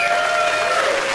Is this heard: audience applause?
yes